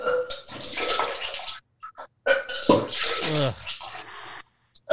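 A person retches and vomits milk in loud, splashing gushes after drinking it for a milk-drinking challenge, with a strained guttural heave partway through and brief pauses between the wet bursts.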